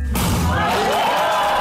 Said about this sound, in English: A groom breaking the glass at the end of a ceremony seals their marriage to their bride on the count of three. One, two, three.